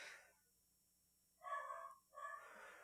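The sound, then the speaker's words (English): A dog barks twice in quick succession, each bark drawn out and somewhat whiny, with no one talking. “Well, my dog is freaking out.”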